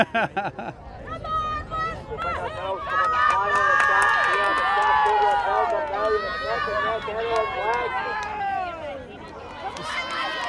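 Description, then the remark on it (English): A crowd cheers at a tug of war between the Lanark and Les Mahigo teams in hot weather, many voices shouting and yelling encouragement, now for Les Mahigo, in a loud, continuous roar of overlapping calls that rises and falls for the whole stretch. “It would seem that the same crowd that were vocally supporting Lanark a minute ago are now vocally supporting Les Mahigo.”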